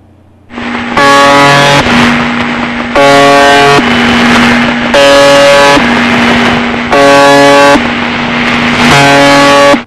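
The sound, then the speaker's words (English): A loud, harsh buzzing tone from a radio station on the shortwave AM band, broadcasting on 4,625 kilohertz, blares in repeated bursts of about a second each, five or six times in a steady rhythm over constant static, sounding much like a truck horn. “that annoying tone, which sounds kind of like a truck horn, is called the buzzer”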